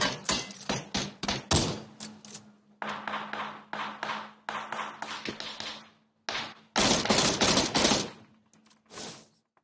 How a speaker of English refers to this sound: I'm coming. That was shooting you or something?